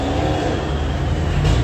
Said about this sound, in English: Oh, that traffic. That didn't go good.